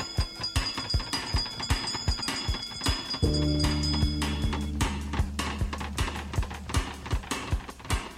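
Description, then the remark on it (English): A bell rings with a sustained, resonant tone midway through, over a steady rhythm of sharp knocking clicks and a thin high ringing in the background. No one speaks. “Wizards and witches, wherever you dwell, give us a hint by ringing a bell.”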